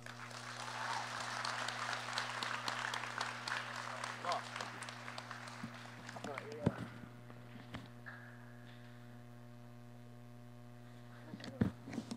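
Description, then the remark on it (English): An audience applauds a poet with dense, steady clapping for several seconds, then it thins out and fades, leaving a low steady hum and a few scattered knocks. “Again, give him another round of applause, alhamdulillah.”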